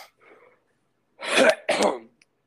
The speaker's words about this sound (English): Are you cutting that out, or? Yeah, what? All my coughing?